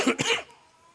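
Two quick, harsh coughs in close succession, loud, from a speaker talking through a speaker system to an audience, followed by near silence for the rest of the moment.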